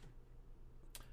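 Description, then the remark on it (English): A single soft mouse click on a computer sounds faintly near the end, with a steady low electrical hum underneath and no talking. “I wonder if you can hear, like, all my clicking on here, too.”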